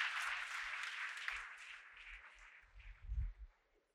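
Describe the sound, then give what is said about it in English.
A church audience applauds, giving the Lord a hand clap of praise as they take their seats, with dense, steady clapping that gradually thins and fades, with a few heavier thumps near the end before it dies away. “Now put your hands together and give the Lord a hand clap of praise as you take your seat.”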